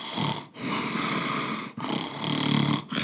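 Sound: imitated loud snoring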